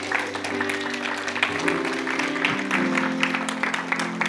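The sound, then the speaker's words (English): A church audience stands and gives God a big hand clap of praise, with dense, steady clapping that holds for the whole stretch, fairly loud, with sustained low musical tones humming underneath and no one speaking. “Stand with me all over the house and give God a big hand clap of praise.”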